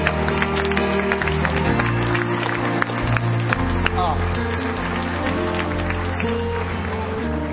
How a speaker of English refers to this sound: Clap your hands to him.